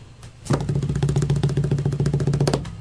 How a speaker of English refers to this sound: Give me a drum roll.